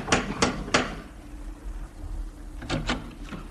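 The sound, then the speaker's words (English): A brass lion door knocker on a brownstone on 93rd Street bangs three times in quick, even succession, then after a short pause raps twice more; the knocks are sharp and loud, with no voices. “Third name now, and address, a little further uptown, 93rd Street, brownstone and door knocker of brass lion.”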